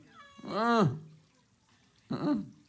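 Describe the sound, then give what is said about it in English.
A cat meows twice, a long drawn-out wail followed by a shorter, rising meow after a brief pause, with only faint background noise between. “Come here, kitty.”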